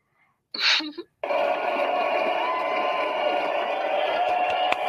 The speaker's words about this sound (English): We're giving you claps